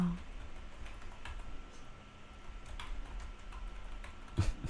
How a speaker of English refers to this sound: Oh. Like my keyboards are clacking. Like my clicking? Yes.